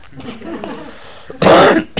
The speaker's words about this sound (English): Pardon me for my cough too.